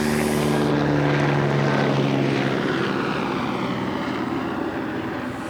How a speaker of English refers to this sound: Just wait for this helicopter. It's killing us.